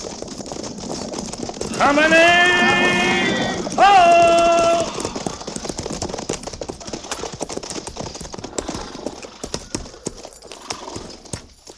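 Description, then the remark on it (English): Horses' hooves clip-clop in a steady, continuous rhythm, with a loud, high whinny rising over the hoofbeats early on before the clopping carries on alone. “Well, let's ride on down to the river.”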